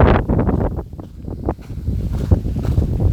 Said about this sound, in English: Oh, it's probably really windy. You can't hear me right now. It's about to rain too.